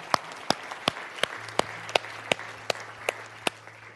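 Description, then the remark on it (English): Audience applause with a steady, rhythmic beat of sharp claps, about two or three per second, over a softer wash of crowd noise. Moderately loud, with no one speaking. “We applaud that.”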